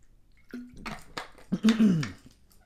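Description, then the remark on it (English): A few gulps and swallows of someone drinking water, with wet clicks and a short throaty hum between them, no talking. “I need some fucking water. My mouth is so dry.”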